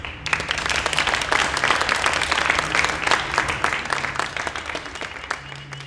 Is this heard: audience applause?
yes